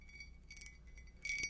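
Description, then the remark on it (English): A teacup of sleepy time tea is set down with two soft, high-pitched clinks, the second slightly louder, each leaving a brief bright ring. It is quiet, with no talking. “Okay, so I'll just put this here and enjoy your tea.”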